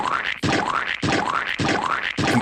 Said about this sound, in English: That's supposed to be like air horns.